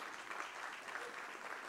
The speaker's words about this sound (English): I thought you might applaud, because that's phenomenal. Let's do that.